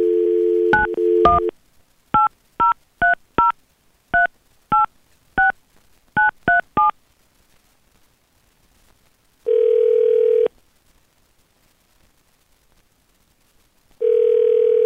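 A telephone dial tone cuts off into a quick string of about ten touch-tone beeps as a morning radio show dials a man for its second date update, then the line rings out twice with long, steady buzzing rings separated by silence.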